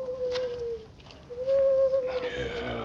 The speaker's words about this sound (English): Inside the cave, Kel Weston stirred and opened his eyes when he heard the hoot of an owl outside.